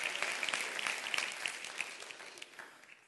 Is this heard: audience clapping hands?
yes